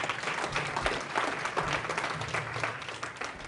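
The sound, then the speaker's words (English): A round of applause from a group for a realtor: steady, dense clapping at a fairly loud, even level throughout, with faint murmuring voices mixed in underneath. “There is a round of applause. Round of applause.”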